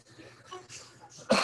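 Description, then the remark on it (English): A single sharp, loud cough bursts out near the end, following a stretch of quiet, breathy rustling. “Excuse me. I ain't no fucking ass weed cough.”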